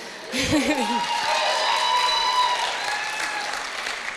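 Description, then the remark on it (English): An audience breaks into steady, dense applause that holds for several seconds, with a brief wavering vocal cheer near the start and a faint sustained tone underneath. “And so, it's true, you can clap, that's all right.”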